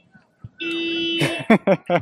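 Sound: car alarm going off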